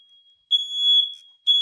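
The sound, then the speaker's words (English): A shrill, high-pitched smoke alarm beeps in loud repeated bursts, a steady piercing tone with brief gaps between, with no one talking over it. “So the moment that I get to the most heartfelt part of my episode, the alarm goes off.”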